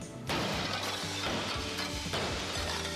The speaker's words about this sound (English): Thermal Safe security glass can protect you and your family from flying debris and accidental or intentional glass breakage.